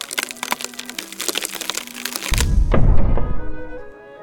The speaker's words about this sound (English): And with a creak and a puff of dust, ew, a trap door rises from the ground.